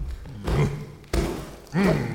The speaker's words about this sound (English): What are you doing? Oh, you're stomping my garden. Stop stomping. That's not very jolly. Stop it.